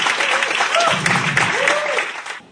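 An audience claps steadily for a couple of seconds, a dense, even wash of applause with a few faint voices and whoops mixed in before it quickly fades out.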